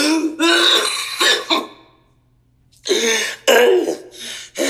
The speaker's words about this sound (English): And that's not a corona cough, all right? I'm just winded, okay? I'm a smoker, damn it. My listeners know I'm a goddamn smoker, all right? I ain't infected.